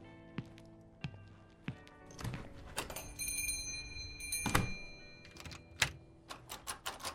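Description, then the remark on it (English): A bookstore door shuts with a solid thud as someone goes out, amid a series of sharp clicks and knocks, while a bright, bell-like chime rings briefly. No one speaks. “Go out the door and come back like you're a customer.”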